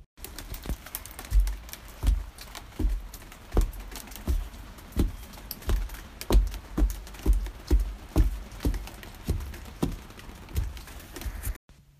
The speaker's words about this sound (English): I recorded the rain that was falling off of the roof onto my deck